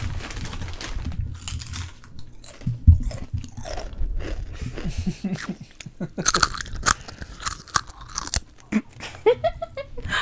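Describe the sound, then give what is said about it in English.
Crunchy chewing with irregular bites and crackling mouth sounds, loud, continuing steadily for several seconds with no talking. “Yeah, I hope you enjoyed our chewing.”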